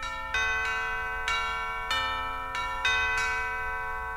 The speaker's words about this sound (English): Oh, good. We have a bell.